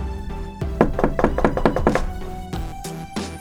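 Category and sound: impact, knocking on a door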